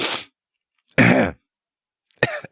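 Three short coughing bursts, like throat-clearing coughs, each separated by a moment of silence, with no talking in between.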